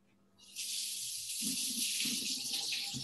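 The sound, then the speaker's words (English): Water from a tap starts abruptly and runs steadily as a bright, broad hiss, with soft splashing and low clattering as soaked cashews are rinsed under the stream. No one speaks. “And then I'm gonna rinse these cashews after they've been soaking for a while.”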